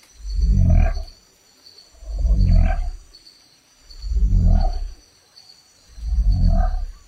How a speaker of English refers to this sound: Yes, it's the frog that can send its own bones through its skin.